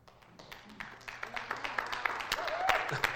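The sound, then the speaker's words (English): Scattered, uneven clapping from an audience starts sparse and thickens toward the end into a light patter of applause, with faint voices murmuring underneath. “I thought I'd get a little more claps there, but it's okay.”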